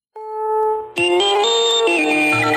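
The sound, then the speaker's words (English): An electronic beep effect: a steady synthetic tone swells in, then a sharper, brighter buzzing tone cuts in and steps through a few pitches, loud and with no talking. “next piece, give me the beep, beep, beep.”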